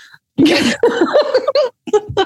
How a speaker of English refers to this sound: I've just nearly died now, coughing. Hold on.